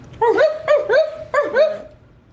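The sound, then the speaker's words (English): Two people imitate a dog barking at the same time: four loud, yelping barks in two quick pairs, with a brief gap between the pairs and no ordinary talk. “Bark, both of y'all at the same time.”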